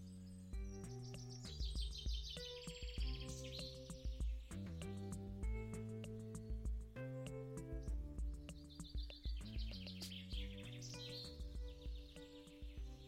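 A couple of jackdaws perched on a roof across the street in Oxford call outdoors, with bursts of bright chirping calls that come and go in clusters, heard over a steady, tonal musical drone in the background. No one speaks.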